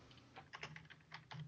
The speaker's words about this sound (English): Can you still hear my typing? Yep. Yes. Fantastic. That's what you have when you have an omnidirectional fancy microphone.